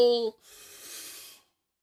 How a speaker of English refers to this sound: That always makes me stretch and yawn and stuff. That's good. Apparently, I'm not stretching enough in the morning.